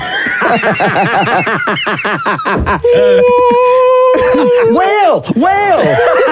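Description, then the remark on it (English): Choppy, laugh-like vocal bursts give way to a voice imitating whale calls: a long, steady droning tone, then several swooping moans that rise and fall in pitch, fairly loud. “Whale!”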